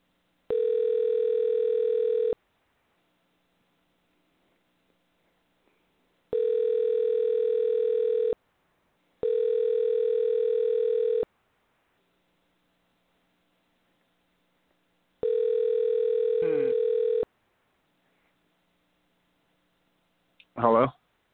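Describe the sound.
Telephone tones sound while a quick phone call is placed during a radio show to the host's son: four steady, fairly loud buzzing bursts of about two seconds each, separated by quiet gaps. A brief voice cuts in at the very end.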